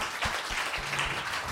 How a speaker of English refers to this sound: We're applauding because it's over. Yeah. I'm glad too.